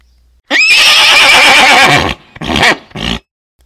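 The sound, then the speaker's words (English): A horse lets out a loud whinny that rises sharply, quavers for over a second, then breaks into two shorter snorting bursts before falling silent. “Not horses.”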